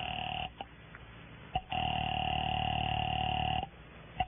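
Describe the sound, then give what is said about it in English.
A steady telephone dial tone hums through a thin, phone-like line in a phone booth, interrupted by a few sharp clicks of dialing before the tone resumes for a couple of seconds. No voices are heard. “I made another call there in the phone booth.”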